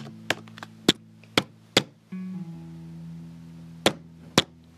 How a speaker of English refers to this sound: I get to aggressively type buttons if I want to.